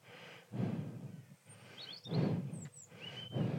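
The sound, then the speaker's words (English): A robin sings a few thin, high whistled notes and trills, faint beneath loud, breathy rushing bursts that swell and fade in pulses; no one speaks. “Who's singing? It's a robin.”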